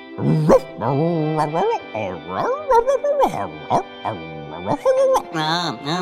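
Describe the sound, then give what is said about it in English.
A human voice imitates a dog, letting out a rapid string of loud yips, yelps and barky whines that rise and fall in pitch, with almost no pauses between them. “Then why don't you just go ahead and bark to us in Yelpinese, and I'll translate.”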